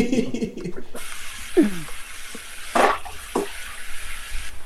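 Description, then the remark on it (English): A tap runs with a steady hiss while dishes are washed, with a few scattered clinks and splashes. A voice is heard briefly at the start before the water comes on. “Now he's washing it up.”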